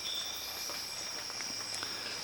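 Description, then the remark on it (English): At dawn in a tropical rainforest, scattered soft drips of condensation fall from the leaves and canopy, tapping irregularly, a few per second, over a steady high-pitched drone of insects. “Also sounds as if it's raining, but it's not, because being tropical rainforest, at this time of day, there's an immense amount of condensation just dripping down from the leaves and the canopy high above.”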